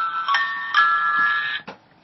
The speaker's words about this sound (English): I've got this app that on my phone that records birthdays. So it's birthday of the day, so it started to chime because it's on birthday.